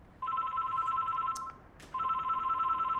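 A telephone rings at a hair, laser and beauty clinic in Punchbowl, with two long, steady electronic trills separated by a short pause and a faint click. No one speaks.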